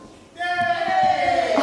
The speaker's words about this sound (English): Yay! Oh, it's a little cheer. For some, others just sat there thinking, well, I don't go to school, so what's that got to do with me?